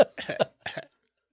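A quick run of coughs, several short, harsh bursts close together, then a pause and two more, with no one talking.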